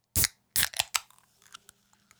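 A ginger and lime soda can cracks open right at the microphone with a few loud, sharp bursts of hiss and snap, then a faint, scattered crackle of fizzing bubbles. No one speaks.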